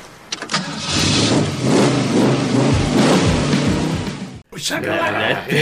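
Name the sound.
car engine revving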